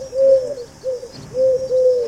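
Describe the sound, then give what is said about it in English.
A pigeon coos in a series of soft, low, throaty phrases, four or so rolling coos with brief pauses between them and no other sounds. “The American army had a pigeon called Cher Ami.”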